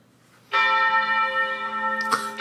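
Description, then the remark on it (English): Bells ring out loudly at the start of a Christmas song after a brief quiet moment, their sustained metallic tones layered and shimmering, with a fresh strike near the end adding to the ringing. “Gotta start with the bells.”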